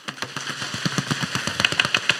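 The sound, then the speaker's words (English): A church audience drums rapidly on tables or knees as a practice drum roll, a dense, fast patter of many overlapping hand slaps that builds slightly in loudness over about two seconds, with no voices. “So do a practice drum roll.”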